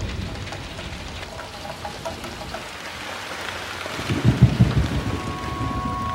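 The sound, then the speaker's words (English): Steady heavy rain hisses throughout, and a deep rumble of thunder swells in around the middle, rolling loudly for a couple of seconds before easing back under the downpour. “There was a storm.”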